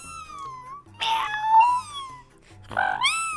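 A pet cat, Luna, meows with a drawn-out wavering cry followed by a second rising meow, loud and clear with no one talking over it.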